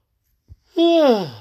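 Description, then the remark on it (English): A single long, drawn-out voiced yawn, its pitch sliding downward as it fades, preceded by a soft, brief thump. “There's that yawn again.”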